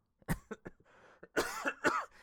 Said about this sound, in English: sorry, I've had this cough for about 2 weeks, and I... Excuse me, and I can't seem to get rid of it.